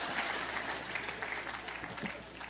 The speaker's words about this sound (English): Well, go ahead and clap. That's some of your relatives on video there, so.